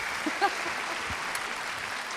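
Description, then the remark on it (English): Audience applause mid-tune during a thumb piano (kalimba) performance: a dense, steady wash of many hands clapping that holds at an even level for the whole two seconds, with a brief faint tonal note near the start. “I have to say, that's the first time, well, for me, maybe ever, that the thumb piano, the klimba's gotten applause mid-tune.”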